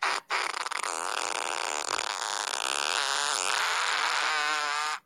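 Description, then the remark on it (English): A long, loud, sustained fart sound effect from an iPhone app, buzzy and flapping, running nearly five seconds after a brief pause, with no talking over it. “It's iFart. Yeah, it's this.”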